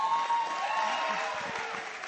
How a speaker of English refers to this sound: Oh, that was a terrible clap.